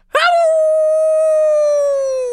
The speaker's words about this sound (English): The howling sound of Blake Wolf came from far away.